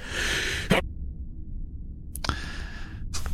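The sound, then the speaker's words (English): A sneeze sound effect, triggered by hitting a sneeze button, plays twice: a breathy, hissing inhale ending in a sharp burst, then a pause before a second sneeze begins. No one speaks. “I hit the sneeze button.”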